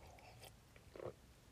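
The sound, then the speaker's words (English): A quiet sip of coffee: faint mouth noises, then one short wet slurp before it falls quiet again, with no talking. “I'm going to have a sip of coffee because my mouth is getting dry.”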